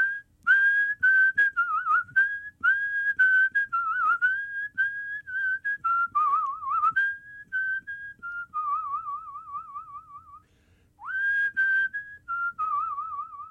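A person whistles a tune alone, bright and clear with fluttering warbles and long held notes, close and steady for the whole stretch with no talking.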